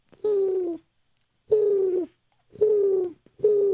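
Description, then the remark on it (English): Two young doves cooing on a windowsill: four low, throaty coos in a steady rhythm, each lasting about half a second with short pauses between, and no talking. “Oh! Two young doves on my windowsill.”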